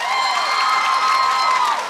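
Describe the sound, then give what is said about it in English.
A crowd claps and cheers in a sustained, dense burst, with high whoops and shouts riding over steady applause that holds loud for about two seconds before easing slightly, as audience members answer by applause whether they believe in ghosts. “So to help kind of find our people up front, who here, by round of applause, does believe in ghosts?”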